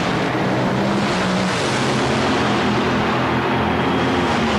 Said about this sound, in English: This is the Top Fuel semifinals. Daryl Gwynn in the far lane against Gene Snow. You heard Don say Snow has predicted a 5.02, that out of the brand new car.